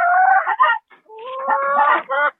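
Older hens clucking in a coop during egg collection, a run of loud, throaty clucks and drawn-out squawks in quick bursts with a brief pause in the middle, no people talking.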